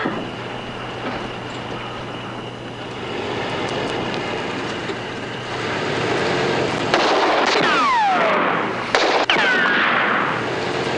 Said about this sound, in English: Put it up and you'll hear the gunshots.